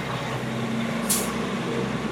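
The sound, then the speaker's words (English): A loud truck rumbles past, its steady roar filling the scene, with a short sharp hiss of an air brake bursting out midway through. “I'll let that truck pass. That was very loud.”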